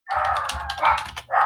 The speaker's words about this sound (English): Dogs are even saying, what are you thinking